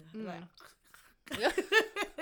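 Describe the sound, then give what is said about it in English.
A voice mimics crunching Chick-fil-A's small cylinder-shaped ice with a few short, rhythmic crunchy mouth sounds, fairly loud, after a brief voiced sound and a pause. “Know my sound effects? Like, yeah, that's some good ice.”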